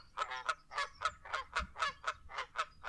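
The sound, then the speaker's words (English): A goose honks over and over in a steady, rapid series of about a dozen loud, nasal calls, clear with no other sounds around them. “Geese, they have, because they honk too when they're in the air.”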